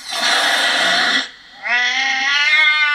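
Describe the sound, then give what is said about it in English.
A loud, breathy cat hiss lasting about a second, followed after a short pause by a drawn-out, wavering yowl, both clear with no talking. “Cat hiss.”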